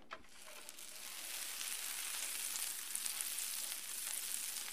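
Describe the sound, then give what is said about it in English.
Butter sizzles steadily on a hot griddle warming on a stove, a continuous crackling hiss with tiny pops scattered throughout and no one speaking. “Once your butter is nice and sizzling, you can spoon a little bit of your batter right onto your griddle and let it cook.”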